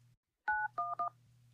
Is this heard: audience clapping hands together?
no